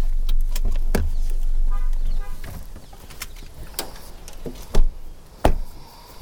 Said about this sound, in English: We pulled into the residential part of the kibbutz, and everyone got out of the car and began fastening helmets again and shuffling our feet.